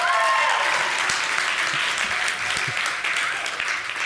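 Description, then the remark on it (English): A crowd claps steadily for about four seconds in answer to being asked who is the youngest in the family, a dense, loud wash of many hands with faint cheering voices mixed in near the start. “How many of you, let me hear by the clap of your hands, are the youngest in the family?”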